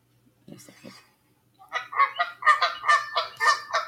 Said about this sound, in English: There you go. The goose or geese.